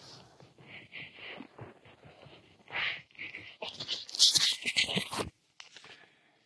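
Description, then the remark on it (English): A puppy scrambles and shuffles around, with irregular scratchy rustles and crunchy bursts that grow louder near the end before cutting off abruptly. “Stay there, puppy.”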